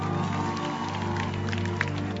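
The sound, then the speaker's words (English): A church audience claps their hands together in a dense, steady wash of applause, many hands overlapping without a clear rhythm, over a constant low hum in the room. “louder hand clap.”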